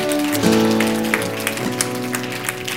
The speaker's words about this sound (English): And everybody said, come on, give the Lord a good hand clap right now, huh?